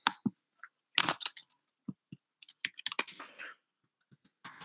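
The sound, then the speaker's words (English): Irregular bursts of typing on a computer keyboard, sharp keystroke clicks clustered in quick runs with short pauses between, moderately loud, with no one talking. “Once again, sorry for the typing.”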